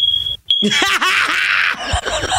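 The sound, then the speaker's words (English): A smoke detector's piercing, high electronic low-battery beep sounds, then a brief second chirp, followed by a shrill, wavering vocal screech that seems to imitate the alarm noise, loud. “If you don't change that smoke detector, that battery been there for 5 years.”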